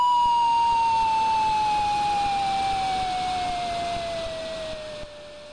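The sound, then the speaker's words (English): A slide whistle from the Commodore 64 video game of Die Hard glides slowly and steadily downward in pitch for several seconds, a clear, pure whistling tone heard on its own and fading slightly toward the end, played when the defeated Hans falls out of a window. “And when you finally defeat Hans, he falls out of a window and the sound of a slide whistle plays.”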